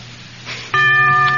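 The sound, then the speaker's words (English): A quiz-show bell signalling a wrong answer rings out suddenly and loudly after a brief quiet stretch, a single sustained metallic tone that keeps sounding steadily until the end. “The bell is tolled.”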